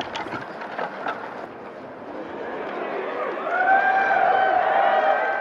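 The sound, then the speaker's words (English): A golf crowd reacts to Jordan Spieth pulling the head cover off his hybrid with a steady buzz of murmuring voices that swells louder in the second half, with a few raised, drawn-out voices rising above the hubbub. “That's the crowd reacting to Spieth pulling the head cover off his hybrid.”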